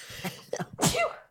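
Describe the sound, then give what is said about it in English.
A single loud sneeze with a short intake of breath before it, the burst starting sharply and trailing off into a brief, breathy tail. “Bless you. Thank you.”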